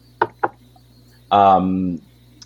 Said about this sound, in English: I knock on wood